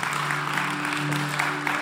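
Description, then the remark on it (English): An audience at a Sunday morning church service claps together to praise the Lord in a steady, dense wave of applause that holds at an even level throughout, with a faint low sustained tone humming underneath. “Let's give the Lord a round of applause and praise to Him for what He's done.”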